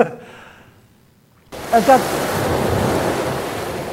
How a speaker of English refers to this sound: The author uses the sea's roar. You guys have been at the beach, right? Are the waves quiet? Are the oceans quiet? No. They are boisterous.